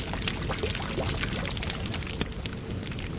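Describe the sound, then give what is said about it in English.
Water pours steadily from a freshly opened bottle for a few seconds, a continuous splashing stream with gurgling tones rising early on and no voices, as half of it is poured onto a blackened gash near a man's ribs. “Pulling Riva's tattered robe aside, Vorn cracked the seal on a bottle of water and poured half of it on a blackened gash near the man's ribs.”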